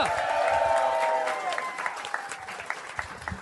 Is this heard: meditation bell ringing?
no